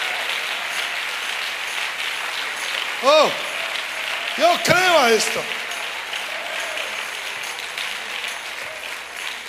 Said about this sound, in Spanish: Come on, dale un aplauso al Señor.